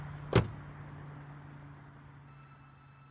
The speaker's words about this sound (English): The engine growled behind her. She felt that in her bones. Then she felt the door slam.